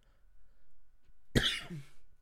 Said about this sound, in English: sorry about me coughing this week, guys. I got a tickle in my throat.